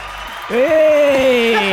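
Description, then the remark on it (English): Steady applause, a dense hiss of many clapping hands, swells after a moment as a loud, sustained whoop rises and holds over it until the end. “Oh, it's a lengthy applause.”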